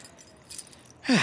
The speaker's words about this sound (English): Oh, okay, 1 second. I got like a bazillion keys here.